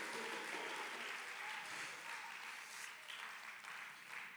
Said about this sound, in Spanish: Y el que lo crea, denle fuerte aplauso, por favor, al Señor con todo el corazón.